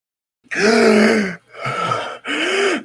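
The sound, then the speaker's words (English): A voice imitates a creature's groaning breath coming from below: three drawn-out, raspy groans in a row, the first longest, loud, with no talking around them. “the, Daylor starts breathing below you guys”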